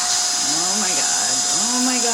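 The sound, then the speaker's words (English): A vacuum cleaner, grabbed by a woman as a weapon against a bee, runs with a constant, loud whirring roar and a steady high-pitched whine, while a person's voice talks over the noise throughout. “She grabs the nearest weapon she has, the vacuum.”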